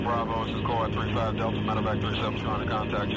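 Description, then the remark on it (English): A military helicopter on a mission during the Vietnam War, its steady, droning engine roar filling the scene at constant loudness, with indistinct voices, like radio chatter, running over the mechanical hum. “The helicopter mission we're hearing the sound of right now, it became a critical moment of”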